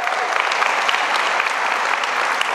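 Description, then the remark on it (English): A crowd applauds to honor their pastors, many hands clapping at once in a dense, continuous wash of sharp claps that holds at an even, fairly loud level throughout. “Can we just clap our hands?”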